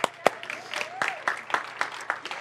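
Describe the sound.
An audience applauds with loose, scattered clapping, the sharp claps landing unevenly rather than in a steady roar, while a few voices call out and murmur underneath.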